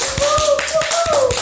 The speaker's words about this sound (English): Let's give it to her with a big round clap of applause.